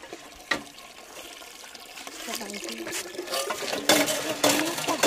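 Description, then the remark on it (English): Water sloshes and splashes as it is drawn up from a well and poured while fetching water for a family, with louder gushing bursts toward the end and faint voices murmuring in the background. “As well as school, you help your father to farm the family field and your mother to fetch water from the well.”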